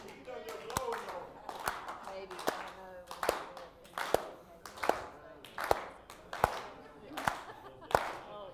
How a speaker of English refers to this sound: Oh, you got it. You got it. Everybody clap.